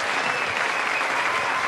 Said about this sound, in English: He played that one. I just clapped. No, I did. I never touched this. He playing, bro.